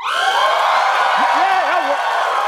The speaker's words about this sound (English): Well, you guys might be cheering